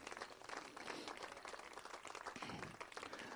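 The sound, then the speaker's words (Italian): An audience applauds in remembrance of Paolo Borsellino and his escort on the 30th anniversary of the Capaci massacre, many hands clapping together into a dense, even wash of sound at a fairly quiet level, with no pause in between. “Quindi nel nostro piccolo vogliamo ricordarli facendogli un applauso.”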